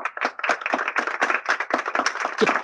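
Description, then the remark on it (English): A crowd applauds little Jimmy, a boy being introduced to the audience, with dense, overlapping clapping that holds steady and fairly loud throughout, with no voices cutting through. “So let's all give a big round of applause to little Jimmy.”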